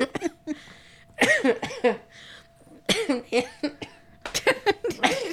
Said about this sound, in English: Do you hear that cough? What's frustrating is I'm trying to cough harder, and that's the hardest I can cough. It's so aggravating.